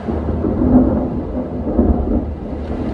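Deep, continuous thunder rumbles through a steady rainstorm in Vancouver around 11:30 p.m., following forked lightning, a loud low roar that swells and surges without pause, with the hiss of falling rain underneath and no voices.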